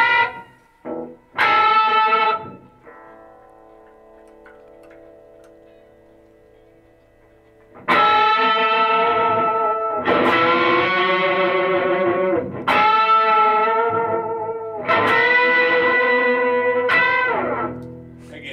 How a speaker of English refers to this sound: But it also, just, I hear that Boss synthesizer pedal. The screaming unisons. Man, make sure you really dig it, like... It's like an organ sound under the guitar.